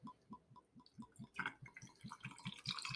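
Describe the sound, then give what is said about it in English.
Scotch whisky glugs out of a bottle into a glass with ice in a steady rhythm of low pulses, with a brighter splashing swell building partway through. No one speaks. “All right, let's pour about.”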